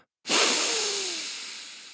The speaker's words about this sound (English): Its lights flashed different colors, and the schnozzle vent hole widened. Dallas's eyebrows shot up as he took in a long sniff.